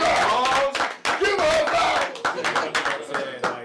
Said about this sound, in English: Applaud. Yes. Come on, get into it.